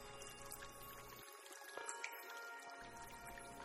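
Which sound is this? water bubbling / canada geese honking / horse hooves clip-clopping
water bubbling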